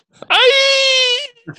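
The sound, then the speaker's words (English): A Wilhelm scream sound effect: one loud, sustained, strained male yell lasting about a second, swooping up sharply at the start and holding a steady pitch, followed by a brief mumble. “We need a Wilhelm scream.”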